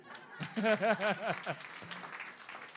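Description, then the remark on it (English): An audience at a church fundraising service for the Eurasian Camp Meeting claps steadily in a dense, noisy wash while a voice rises in a sung or shouted phrase over it, then the applause carries on alone at a moderate level. “You're clapping your hands.”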